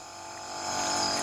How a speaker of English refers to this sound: Now, we're hearing now a little moped coming up.